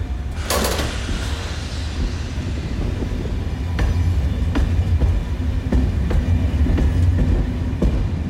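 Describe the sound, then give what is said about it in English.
A brand-new single-carriage train running from Brive to Ucelles rolls steadily along the rails with a constant low rumble, punctuated by sharp clacks and metallic clicks from the wheels and carriage, heard from on board with no talking. “Well, I managed to get on it, and I found myself on a single carriage train from Brive to Ucelles.”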